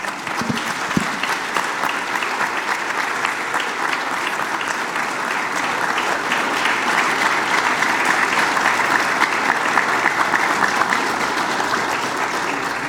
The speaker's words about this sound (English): I want to ask all the women in here to please stand. And everybody else, I want us to give these individuals a round of applause.